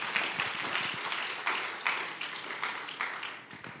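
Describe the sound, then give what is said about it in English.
A church audience applauds in welcome: dense, overlapping claps form a steady crackling wash for several seconds at a moderate level, with a few sharper individual claps standing out and no voices. “Welcome, a round of applause.”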